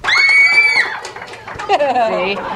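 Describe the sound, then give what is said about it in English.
High-pitched squealing from a live audience of Harry Potter fans answering whether Harry is a Horcrux, one long sustained squeal followed by a shorter wavering one, with other voices mixed in around them. “They made their noise and chickened out. A tiny they didn't hear squee, anymore.”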